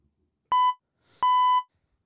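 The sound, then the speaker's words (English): Two loud, steady censor bleep tones covering quick swear words, a short one followed after a brief pause by a longer one, clear with nothing else underneath. “Beep, beep.”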